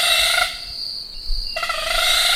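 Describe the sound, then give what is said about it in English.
A grey-headed broadbill's wing-made display sound: a loud, steady, high mechanical buzz with a harmonic tone, breaking off for about a second, then resuming just as strongly. No voices. “Here is another broadbill, the grey-headed broadbill.”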